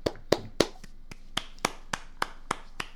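A single person claps steadily about ten times in an even rhythm, the first few claps louder and sharper, the rest slightly softer. No one speaks.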